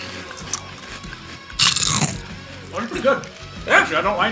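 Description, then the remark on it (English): Loud crunching of a crisp, bugle-shaped corn snack being eaten, a sharp burst of bites followed by irregular chewing crunches, with some talking around it. “All right, chew it up.”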